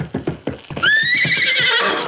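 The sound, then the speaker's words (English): A horse being worked out as a jumper in a stable ring lets out a loud, shrill whinny that rises and wavers, while hooves clip-clop in a steady rhythm underneath, with no voices. “Take it easy with that horse.”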